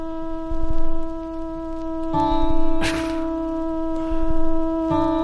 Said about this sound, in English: I'm going to keep striking it and tightening gradually. I'll adjust the string until it sounds the same as the correct note, like this.